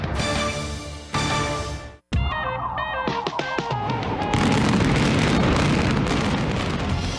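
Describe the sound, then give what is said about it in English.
A short burst of music cuts off, then a sharp blast and quick rapid-fire pops lead into a loud, continuous roaring rumble as a building comes down in a demolition implosion in Evansville, Indiana. “An implosion setting off an economic explosion in Evansville.”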